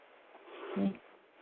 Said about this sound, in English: Sorry, this is my dog is making sound. He's coughing.